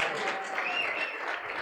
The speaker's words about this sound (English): Let's give them a round of applause for competition level right there.